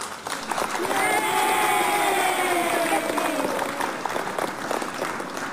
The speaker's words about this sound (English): Let's clap for all of them.